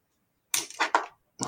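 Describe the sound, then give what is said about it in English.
A brittle snap and crackle as a nail polish bottle is pulled free from a desk: a quick cluster of sharp cracks, a short pause, then another crack, with no talking. “That was a nail polish attached to the desk, of course.”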